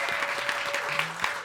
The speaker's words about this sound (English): Round of applause.